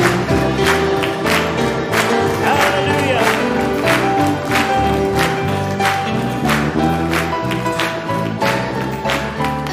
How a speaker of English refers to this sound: Hey, oh, let's clap our hands. Let the musicians play.